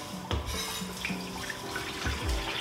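Liquid from a whole can splashes and gurgles steadily into a bowl while cooking, a continuous pouring sound with a few soft thuds and clinks, no talking.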